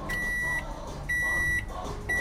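A microwave oven in a bar, heating a pizza for a customer, sounds three evenly spaced, high-pitched electronic beeps, each about half a second long, over a steady low background hum.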